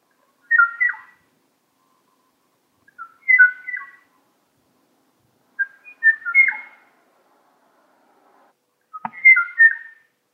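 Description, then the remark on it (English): A male Kauai o-o bird, the last of its kind, calls for a female in clear, flute-like whistled phrases, four separate bursts spaced a couple of seconds apart, rising and falling, with silence between and no other sounds. Recorded in 1984. “James Jacoby recorded this kawaii o-o bird. It's a male calling for a female”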